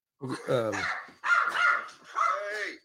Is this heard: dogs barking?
yes